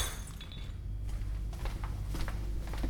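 A glass whiskey bottle shatters with a sharp, bright crash, followed by scattered tinkling of shards settling over a low background rumble. No one speaks.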